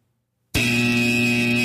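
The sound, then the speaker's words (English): An air horn blares suddenly after a moment of silence, a loud, steady, brassy blast that holds at full volume to the end with no voices. “I, of course, cue air horns spatchcock.”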